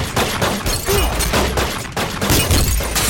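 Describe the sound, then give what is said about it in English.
Glass shatters loudly as a man punches out a car window, with a dense run of crashing, crunching bursts and scattering shards filling the whole moment. No voices are heard. “Roman takes his shirt off and punches out Carter's window.”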